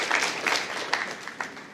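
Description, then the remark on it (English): An audience applauds with dense, steady clapping and a few sharper claps standing out, holding at a moderate level and easing off slightly toward the end, with no speech. “I just decided I was going to keep ramping that up until you started cheering before I ended.”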